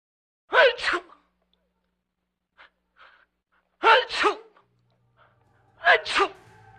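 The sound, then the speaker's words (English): Three loud sneezes spaced a couple of seconds apart, each a quick sharp intake followed by an explosive burst, with only faint rustles and breaths in the quiet between. “As a teenager, he wheezed, his eyes watered, and he sneezed.”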